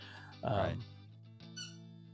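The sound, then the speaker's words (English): A dog, Cody, chews a squeaky raccoon toy on the floor, letting out a loud squeal, then a shorter, higher squeak about a second later, over a low steady hum. “He's still squeaking the freaking raccoon in the floor. Mascot is chewing the mascot.”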